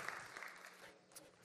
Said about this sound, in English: You can clap for that too. Someone clapped once. You can clap a couple more times.